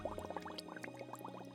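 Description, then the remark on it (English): Rapid, steady bubbling of small bubbles popping and gurgling underwater, a dense run of quick plops, with no voices. “Plop, plop, plop is the sound you hear from popping bubbles, a crystal sphere.”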